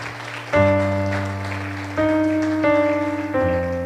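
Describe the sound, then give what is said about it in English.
An audience gives a clap offering to the Lord after a healing prayer, clapping steadily in a dense, continuous wash of applause while sustained organ or keyboard chords ring over it, shifting to new chords a few times. “Can we just give the Lord a clap offering?”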